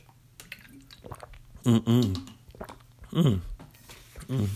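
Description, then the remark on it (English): Wet mouth sounds of someone sipping and swallowing water, broken by two or three short, voiced throat-clearing bursts. No words are spoken. “I need some water right now. Let me clear my throat.”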